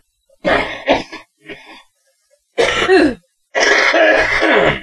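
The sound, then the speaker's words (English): Several harsh bursts of coughing and throat clearing, a couple of quick hacks followed by a softer rasp, then two longer, rough, congested coughs after a short pause. “I think you were already coughing, so I jumped in.”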